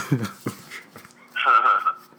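A large dog pants in a few quick, breathy bursts, then lets out a short, high whimpering whine, moderately loud.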